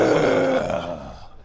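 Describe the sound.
A person imitates a growl with one rough, low, throaty rumble, loud at first and then trailing off over about a second and a half, with no other talking.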